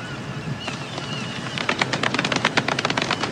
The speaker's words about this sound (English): Golf clap. Golf clap.